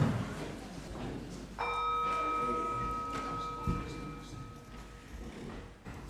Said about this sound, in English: We will take a moment now to light the candle, hoping somebody's standing by with the gong bell.